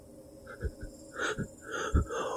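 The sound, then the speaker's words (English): Heavy, wet breathing of a lorry driver, several ragged, wheezy breaths drawn and pushed out in an uneven rhythm, with no talking. “The lorry driver's head pressed hard and wet against my cheek and shoulder, and he was breathing heavily.”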